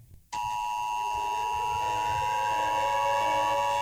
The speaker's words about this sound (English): How many fucking sirens have we played? So many fucking sirens.